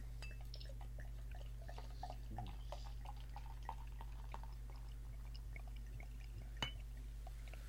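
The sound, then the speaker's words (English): Carbonated dark amber beer is poured from a bottle, coming out thick with a huge head, a soft, fizzy crackle of tiny scattered pops and bubbles over a steady low background hum, fairly quiet, with no one speaking. “Very confident pour. Wow, that's coming out with a huge head on it.”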